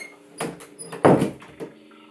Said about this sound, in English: Okay, let me just shut the door. Wait a second, I just shut the door.